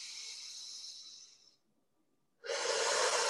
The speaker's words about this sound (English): It is going into the lungs and breathing it out. Whatever it is safe to let go.